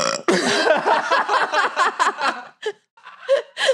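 A long, loud, gravelly burp rumbles for about two seconds, followed by a few short breathy snickers and gasps.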